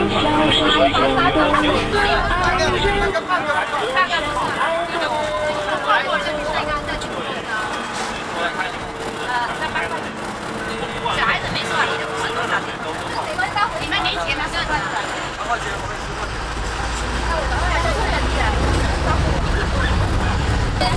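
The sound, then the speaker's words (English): Steady engine rumble and road noise fill the space while several voices chatter indistinctly, heard from the back seat of a moving bus heading to a small countryside village, with the low drone swelling toward the end. “I'm sitting in the back of the bus.”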